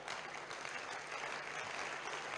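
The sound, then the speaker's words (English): A crowd claps steadily for the whole stretch, a dense, even wash of many hands with no gaps and no voices standing out. “Oh, you should be clapping better.”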